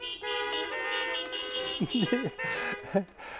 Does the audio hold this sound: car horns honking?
yes